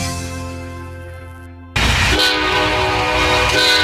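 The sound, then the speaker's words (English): A train horn blows a loud, steady multi-tone chord, then cuts sharply into louder, rougher rumbling train noise with the horn tones still sounding through, continuous. No one speaks. “This weekend, take a train ride back in time on the Osceola and St.”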